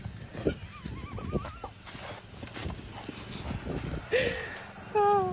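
A horse whinnies in a high, wavering call, followed moments later by a couple of shorter neighs, all over a low, busy background rumble.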